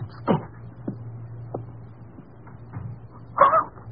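A few faint knocks followed by a short creaking burst as a bedroom door upstairs opens or closes, over a steady low hum in otherwise quiet surroundings.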